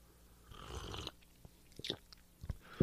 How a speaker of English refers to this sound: And, excuse me, let me take a sip of this tea real quick, and I'm going to get right back to this. Hold on.